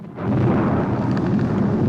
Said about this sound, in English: Oh, we still got some more explosions, that's okay.